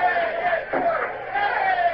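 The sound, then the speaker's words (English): A ship's crew of men cheering and shouting together in a sustained, loud roar of many overlapping voices with rising and falling yells, continuing steadily for the whole moment. “What are those idiots cheering about? From the noise they're making, you'd think they'd won Trafalgar.”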